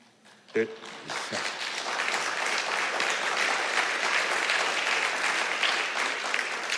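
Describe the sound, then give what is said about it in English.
Sustained applause in a church, from elders applauding declarations that were read out, swells in after a brief sharp sound: a dense, steady wash of clapping hands that stays loud and even for several seconds. “It's interesting, in the church, those declarations got applause after every one from an elder.”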